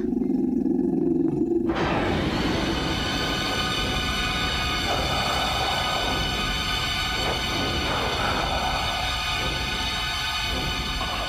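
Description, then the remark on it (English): A deep, rumbling growl from Gmork, a wolf-like creature puppet in a film, swells after a brief low tone and carries on loud for about ten seconds, rough and continuous with no speech over it. “And in the shadow, you can barely see that puppet growling, Gmork, like.”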